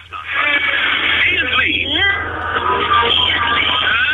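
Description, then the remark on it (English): A listener's own version of a theme tune, played back through a phone line, sounds thin and tinny, with melodic voices gliding over steady music at an even, fairly loud level for the whole few seconds. “Yeah, I'm going to try and play it on the phone, but it doesn't work very well.”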